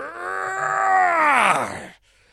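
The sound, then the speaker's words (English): A person imitates a beast's frightful roar: one loud, drawn-out growling cry that swells, bends downward in pitch and cuts off after about two seconds, with no talking. “I could feel the breath of the beast as it was bearing down and let out this frightful roar.”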